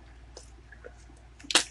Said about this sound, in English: Sorry if you just heard that noise. I'm drinking water from a water bottle.